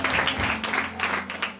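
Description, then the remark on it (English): An audience claps their hands for Jesus, a dense, steady wash of applause with no clear individual beats, moderately loud throughout and with no voices standing out. “Okay, clap hands for Jesus.”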